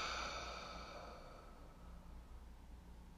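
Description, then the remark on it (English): A slow, easy breath out through the mouth during a guided breathing exercise, starting with a soft airy rush that gradually fades away. It is quiet, with no talking. “Now take a nice easy breath in through your nose, out through your mouth.”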